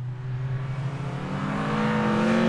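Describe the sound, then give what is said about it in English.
A loud race car engine revs up steadily over a few seconds, its droning pitch climbing higher as it accelerates. No voices are heard. “So, ladies and gentlemen, let's start your Bobcast engines.”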